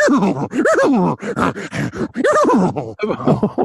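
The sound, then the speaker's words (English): A person vocally imitates a horse, but the rough, rising-and-falling growls come out sounding more like a Bengal tiger's snarl, in several loud, guttural bursts with brief gaps. “I don't know why the third part of that the horse why did the horse turn into a Bengal tiger?”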